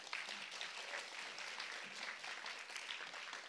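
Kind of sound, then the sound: crowd, audience clapping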